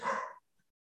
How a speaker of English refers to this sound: Yeah. At least she's a watchdog. That's always a little bit of confidence when your dog's going nuts at the door.